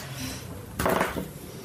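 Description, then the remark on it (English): A short burst of rattling clatter of dice tumbling across a hard surface, rolled for an opposed check in a game, lasting under half a second against a quiet background murmur. “I need you then to make me a present command check against the Turian. So it will be an opposed check, so you'll roll first.”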